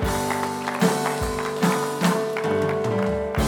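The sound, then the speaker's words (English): A church audience gives a hand clap of praise as people take their seats, clapping in scattered, uneven bursts over steady sustained keyboard chords, the claps sharp and moderately loud against the held low tones. “Give him another hand clap of praise while you take your seat.”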